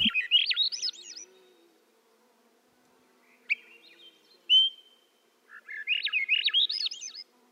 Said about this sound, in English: I know that one because that's the one up high in the treetops. Yep, that's that one. It's a, he lives up in the canopy in the old growth forest. The vireo? Swainson's thrush. Swainson's thrush. Okay, Swainson's thrush.